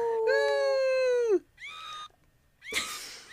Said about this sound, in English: This is the tiniest scream. It's not. Is it broken? I think it might be broken. Oh, no. That's the end of my sound machine.